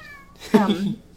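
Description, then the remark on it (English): A single cat, the speaker's own, meows once. The call is short and drawn out slightly, rising then falling, and stands out clearly against a quiet background. “But oh, there's my cat.”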